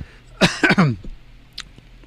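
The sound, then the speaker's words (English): A single loud cough from someone chewing a cough drop bursts out in a couple of quick harsh pulses, followed by quiet room noise and a faint brief rustle. “Why did you just cough?”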